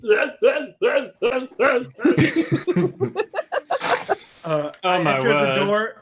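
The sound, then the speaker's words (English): A person gives a loud, drawn-out belch of about a second, deep and rumbling, right after a stretch of choppy voiced sounds and breathy bursts from a speaker. “I entered the door as I belch.”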